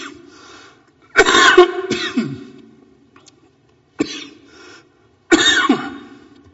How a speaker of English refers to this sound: You guys should mute the mic while I'm coughing up there. That'd be okay.